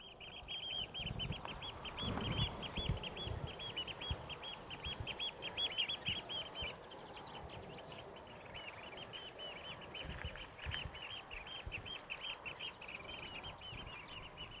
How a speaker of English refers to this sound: Now today is going to really test out my bird song, because I'm not that familiar with shorebirds. But I think those are oyster catchers. Just too far away to see in the haze. Little flock of waders.